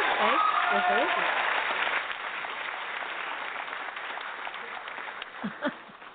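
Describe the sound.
An audience applauds a guest as he is welcomed onto a show, loudest at the start with some cheering voices mixed in, then settling into a sustained, slightly softer clapping that tapers at the end.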